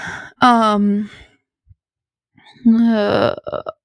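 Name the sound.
yawn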